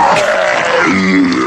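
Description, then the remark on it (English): A loud, sustained honking nose blow lasting about a second and a half, with a harsh, buzzy tone that wavers in pitch before trailing off. “Hold on, I'm going to blow my nose.”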